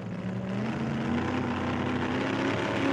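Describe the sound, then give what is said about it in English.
A loud hydroplane boat engine drones steadily with a rough, buzzing tone, its pitch rising slightly as it revs into turbo mode toward the end. No voices are heard. “The hydroplane revs into turbo mode.”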